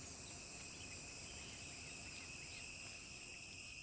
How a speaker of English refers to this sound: As we reached our final destination, the sound of the cicadas grounded me.